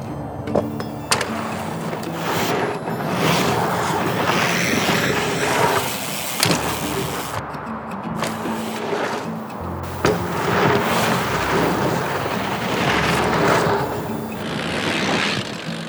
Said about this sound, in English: You can hear his feet landing back on the pedal after tail whips as he catches the bike and moves on to his next trick.